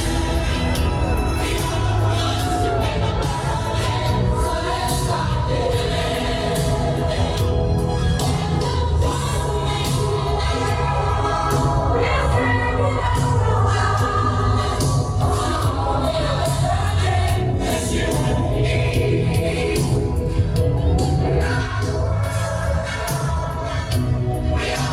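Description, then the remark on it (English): Truck horns blare in long, sustained low tones at a protest, over a dense, loud crowd yelling and whooping, the noise continuous and unbroken throughout. “Of course, you have to have a truck honking in the background.”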